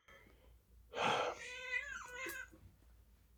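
A domestic cat, male, lets out a long, drawn-out meow, fairly loud, rising into a strained, wavering cry before trailing off, with a soft breathy sound near the end, while it attacks and then rubs up against a person.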